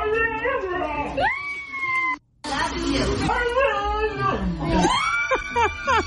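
A dog, taught by its owner, a Massachusetts woman, to say "I love you," makes loud, drawn-out howling whines with rising and falling pitch, shaped like the spoken phrase "I love you," repeated several times with a brief pause partway through.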